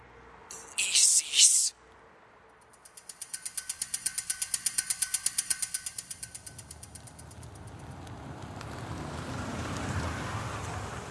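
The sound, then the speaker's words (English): A pickup truck engine idles with a fast, steady chugging pulse that swells and fades, after a brief harsh burst of noise, then gives way to a broad, steady rumble. “Susan steps out of a pickup truck, looking at a slip of paper in her hands.”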